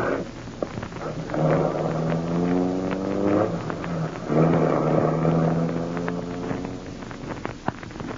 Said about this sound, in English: Harding's driving off in his car.